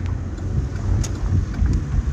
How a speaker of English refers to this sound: There was no cars coming, and now since the light turned, all these motherfucking cars.